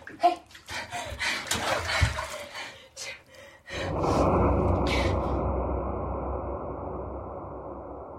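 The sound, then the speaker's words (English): Water sloshes and splashes in a bathtub in uneven bursts, mixed with sharp gasping breaths, as a woman shakes a man and tries to pull his heavy, inert body out of the bath, before settling into a steady rush of running water. “… shakes him and tries to pull him out of the bath, but isn't able to lift his heavy, inert body out of the water.”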